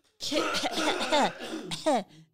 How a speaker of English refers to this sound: I need to cough. You talk.